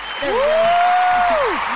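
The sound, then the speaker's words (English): A canned applause sound effect plays: a dense, steady wash of clapping for about two seconds, with a sustained whistle-like tone sliding up, holding, then dipping back down over it. “Do we have a clapping sound over here?”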